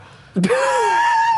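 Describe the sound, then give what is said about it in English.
A person vocally imitates a basketball player's big, drawn-out yawn while lined up for the national anthem at a game: a sharp intake of breath that stretches into a long, rising-then-falling moan, fairly loud. “There's this huge yawn, and it was like, oh, this is perfect.”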